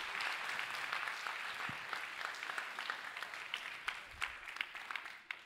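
A crowd claps steadily in dense, overlapping applause that stays loud and even for several seconds, with a few sharper individual claps standing out near the end and no voices.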